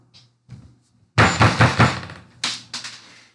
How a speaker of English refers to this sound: Stop doing that. Somebody broke something. Somebody's knocking.